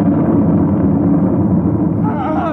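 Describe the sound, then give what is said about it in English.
A loud, sustained explosive roar with heavy low rumble throughout, joined near the end by high metallic screeching like tearing metal. “He could still hear and feel that sharp metal-ripping explosion, that searing wave of heat.”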